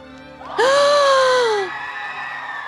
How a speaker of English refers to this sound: People screaming.